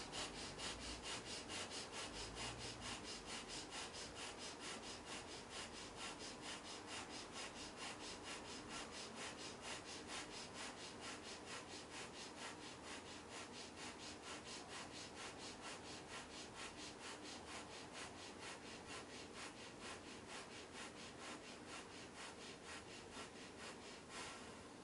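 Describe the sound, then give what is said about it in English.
Rapid, forceful nasal breathing of the breath of fire exercise, light sniffing through the nose while squatting with hips sunk, in a steady rhythm of quick, breathy sniffs and puffs, repeating evenly for the whole stretch at a constant level with no talking. “Let's move into breath of fire, light sniffing through your nose.”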